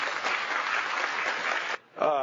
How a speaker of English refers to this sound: If you love his family, how about a round of applause for them?